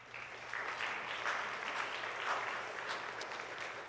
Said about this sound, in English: You guys can give them a round of applause.